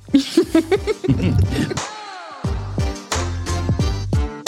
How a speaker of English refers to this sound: never used to cough into the microphone like that.